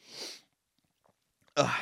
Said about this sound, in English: Sorry, I'm going to sneeze. Hold on. Oh, excuse me.